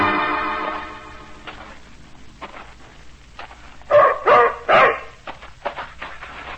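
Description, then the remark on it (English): A German shepherd, an ex-army dog called Savage, lets out three loud barks in quick succession, preceded by a quieter stretch of low rumbling and whining, with no talking. “Keep that animal away from me. German shepherd dog, that's what he is.”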